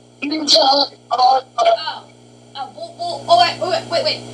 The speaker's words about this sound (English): No, I mean you bugged out, like, you're... Like, your phone that started, like, glitching.